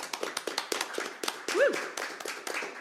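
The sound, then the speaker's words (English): A small crowd applauds panelists representing Alt Pronouns, RXR and Athlete Ally as they are introduced, with brisk, uneven claps that keep up steadily throughout, and a short rising-and-falling whoop or whistle pops up midway through the clapping. “So round of applause.”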